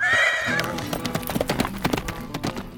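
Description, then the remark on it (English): Tornado, Zorro's horse, lets out a high, wavering neigh, then hooves pound in a quick, uneven galloping rhythm, each strike sharp and fairly loud, as the horse races along the wall of a mansion with a purple cloak fastened to its saddle. “He undid his purple cloak, fastened it about Tornado's saddle, then he whistled.”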